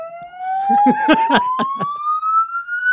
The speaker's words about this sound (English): Now, one of these podcast pranksters pulled the fire alarm.